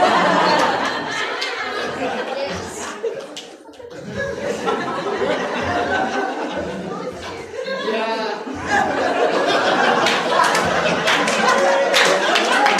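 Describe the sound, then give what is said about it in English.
A lively crowd cheers, laughs and claps here and there, a steady roar of voices that swells again in the last few seconds. “Don't cheer, everybody.”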